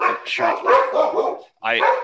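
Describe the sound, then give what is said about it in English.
Several dogs in the background bark excitedly in rapid, overlapping bursts, set off by knocking on wood, fairly loud, with a brief pause before another flurry of barks and yips. “I was just knocking on wood, and that just made the dogs in the background go ape shit.”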